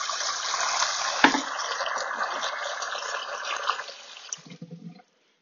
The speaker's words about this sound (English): Giving some water. This is what you're hearing now.